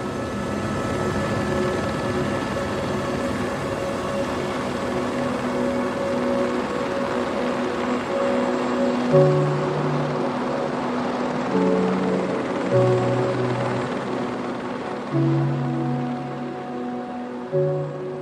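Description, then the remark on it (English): A helicopter flies steadily, its engine whine and rotor drone holding a constant, fairly loud hum with shifting tonal pitches throughout, and no one speaking. “Like legally and for safety reasons, you can only fly a chopper over the ice cap if you've a minimum of 200 metres visibility.”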